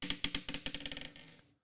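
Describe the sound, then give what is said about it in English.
Dice clatter across a hard tabletop in a quick run of sharp clicks that speed up and grow fainter as they tumble to rest, with no voices. “Who cursed my dice?”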